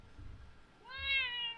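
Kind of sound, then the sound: animal, cat meowing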